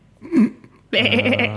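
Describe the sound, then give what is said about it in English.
A person imitates a sheep's bleat: a brief voiced sound, then a loud, sustained, wavering "baa" lasting under a second. “Like a middle-aged couple that you would see on the street and think those are normal people started bleating.”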